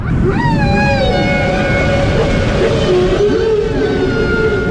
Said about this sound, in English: Almost unbelievably, this was the first time that anyone had ever identified the sound of a whale. When biologist Dr. Roger Payne heard it, he was thrilled. It was the most beautiful thing I had ever heard from nature.